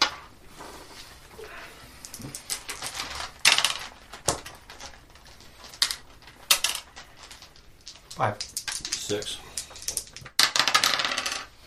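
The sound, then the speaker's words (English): Dice rattle and clatter together in a bag in repeated bursts, a busy jumble of sharp clicks and rolling knocks that comes and goes over about twelve seconds. “Let me notice all my dice in the bag first.”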